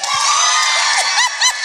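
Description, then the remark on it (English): Ladies in a live audience clap and cheer loudly and continuously, dense applause mixed with scattered whoops and shouting voices rising over the crowd noise. “Clap it up if you think”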